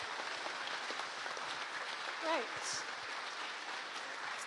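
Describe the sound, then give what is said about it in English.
Steady, dense applause from an audience fills the whole stretch at an even level, with a single voice briefly speaking over it midway through. “So let's give them a big round of applause, please.”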